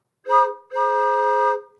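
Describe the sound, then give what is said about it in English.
Two blasts from an old 1928 steamboat whistle, the Steamboat Willie whistle that will be the sound of the whistle on Mickey and Minnie's Runaway Railway: a short toot followed by a longer held one, each a steady, rich multi-toned hoot with no talking. “And so what's so great about it is, again, this will be the sound of the whistle on Mickey and Minnie's Runaway Railway, and it sounds something like this.”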